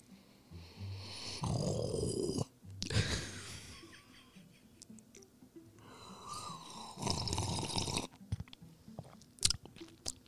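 Wet, sloppy licking and slurping as someone laps up Cool Whip, with irregular smacking bursts, snuffling breaths and a few sharp clicks over about ten seconds.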